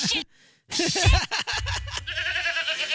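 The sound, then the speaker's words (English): Goats bleat loudly in wavering, quivering cries, one after another, with a low rumbling buzz underneath the later calls after a brief quiet pause at the start. “Softer, please. You are scaring the goats.”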